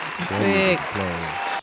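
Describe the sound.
A short burst of applause with crowd noise and a couple of drawn-out cheering voices on top, loud and close, lasting under two seconds before cutting off abruptly.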